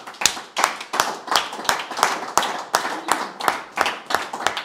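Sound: audience clapping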